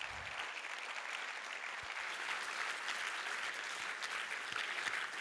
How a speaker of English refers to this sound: Thank you very much. Yes, go on, clap.